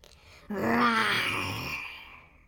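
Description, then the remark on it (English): A voice playing a not-so-scary saber-toothed tiger cub, standing on her hind legs with arms outstretched as she storms into an attic playroom, imitates a small roar: one drawn-out, rising-then-falling growly wail lasting about two seconds, moderately loud and fading gradually at the end. “Roars a not-so-scary saber-toothed tiger cub, standing on her hind legs with her arms outstretched.”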